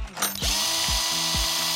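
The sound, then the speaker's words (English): A power drill fitted with a 3/16 drill bit starts with a brief click, then whines steadily and loudly, with a dull thudding knock repeating about every half second beneath the motor. No one speaks. “power drill with a 3/16 drill bit, please.”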